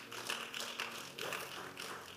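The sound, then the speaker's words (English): Scattered clapping from a group, a brisk, uneven patter of hand claps that swells in a few bursts and stays at a moderate level throughout, with no voices. “If you are clapping, clap.”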